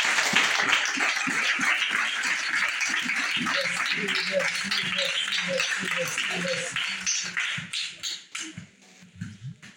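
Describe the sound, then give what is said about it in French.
A church crowd breaks into loud, dense applause giving thanks to God for their pastors, a steady wash of many hands clapping with voices calling out underneath, then thins into scattered, uneven claps before dying away. “On bat un applaudissement, mon Dieu.”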